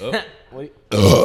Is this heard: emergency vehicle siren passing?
no